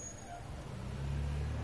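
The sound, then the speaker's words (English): A garbage truck rumbles past, its deep engine drone growing louder and heavier over a steady wash of road noise. “So, let me just let the garbage truck go by.”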